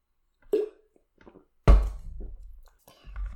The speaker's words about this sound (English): Oh, boy. Hold on. I need a drink of water for this one.